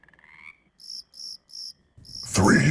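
A short low frog croak gives way to four evenly spaced, shrill insect chirps pulsing in sync in a steady rhythm, then a loud rushing noise swells at the end. No one speaks.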